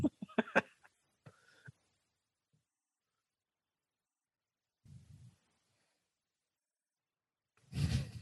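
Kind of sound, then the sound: human body sound, loud sneeze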